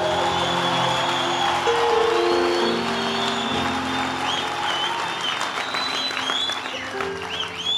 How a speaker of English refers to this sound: You see, in the way you're clapping hands, show that you're not serious, you see?